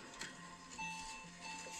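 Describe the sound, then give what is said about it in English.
A clock's mechanical nightingale call: a few brief, thin high-pitched whistles over a steady, quiet whirring and ticking mechanism, with no one talking. “The nightingale from the clock.”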